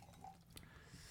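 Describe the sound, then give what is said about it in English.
Water is poured briefly into a glass, a soft trickle with a faint splash partway through, quiet and with no talking. “Let me get a little bit of that water, though.”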